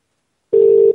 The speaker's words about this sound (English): It's ringing.